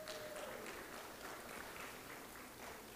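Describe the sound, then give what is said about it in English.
An audience claps steadily for about three seconds for a couple's ten years of marriage, a dense, even wash of many hands with no voices on top, holding at a fairly constant level throughout. “The only reason we clap is because divorce is so common in our culture.”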